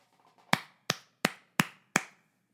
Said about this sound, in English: Bravo, gentlemen. Five claps, one for each round of 5 minutes of fury.